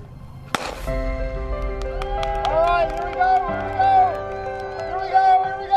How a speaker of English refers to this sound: inspired by the cheering crowd, Julia isn't just running.